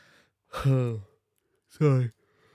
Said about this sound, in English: Sorry. Fucking yawns.